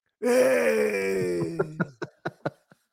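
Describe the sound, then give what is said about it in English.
A person imitates a zombie with a long, low, strained groan that trails off into a few short, rough grunting gasps. “It's like, show me your best zombie.”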